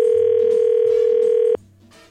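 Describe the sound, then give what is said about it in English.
A steady, loud telephone dial tone hums continuously for about a second and a half while a call is being placed, then cuts off abruptly, leaving only faint background noise. “All right, buddy, hang in the background here while I try to get her on the phone.”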